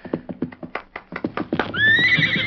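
A horse gives a loud whinny after a quick run of rhythmic hoofbeats. The high, wavering neigh rings out clearly at the end with no talking.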